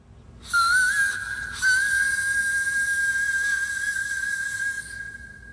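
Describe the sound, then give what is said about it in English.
A single sustained high whistled note, held steady for about four seconds with a brief break near the start, clear, with no talking. “I asked for a high note.”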